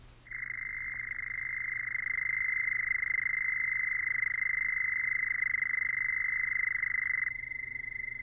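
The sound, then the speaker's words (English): A Houston toad gives one long, steady, high-pitched trill lasting about seven seconds, loud, over a faint low hum, with no voices. “To help you in that process, we have invited some field experts to come today and discuss with you the Houston toad and its importance.”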